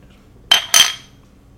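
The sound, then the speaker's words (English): Two quick, bright clinks of glasses of Oktoberfest-style lager touching in a toast, the second following a quarter second after the first, each leaving a high, ringing tone that fades. Another sharp sound starts just at the end. “Cheers.”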